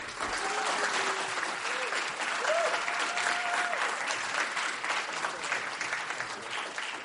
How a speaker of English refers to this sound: So can you please help me give a big round of applause